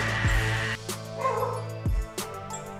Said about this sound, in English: Whoa. They got dogs in here?